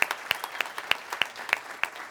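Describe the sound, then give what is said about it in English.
An audience applauds the mothers standing up in the room on Mother's Day, in a dense, steady wash of clapping, with sharper claps landing in a regular pulse about three times per second. It's moderately loud, and no one speaks. “If you are a mom in this room, will you do me a favor and just stand up and let us clap for you today?”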